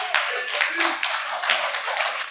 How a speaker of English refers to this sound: Only the guys are clapping well.